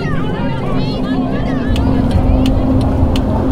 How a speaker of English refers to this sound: Okay. Well, there you go. There's the engine. Dead.